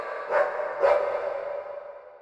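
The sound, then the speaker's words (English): A dog barks twice in quick succession, the two sharp woofs about half a second apart, followed by a lingering, echoey tail that slowly fades out. No one speaks. “Dogs in space. I love it.”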